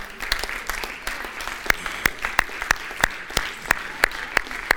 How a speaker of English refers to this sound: Amen. Amen. Come on, let's stand and give the Lord a round of applause.